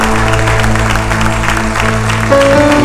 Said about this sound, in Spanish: Alguien puede aplaudir al nombre de Jesús, alguien puede aplaudir al Rey de Reyes, alguien puede adorar al que vive para siempre.